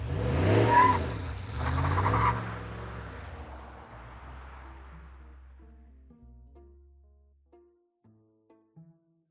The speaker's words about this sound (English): Okay, then you guys hop into your truck. And you speed off towards whatever the fuck this was.